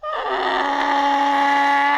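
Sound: pig grunting and squealing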